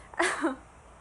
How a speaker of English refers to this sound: All right. I'm gonna take a quick sip of water.